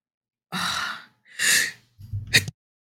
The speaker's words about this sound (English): Had to sneeze.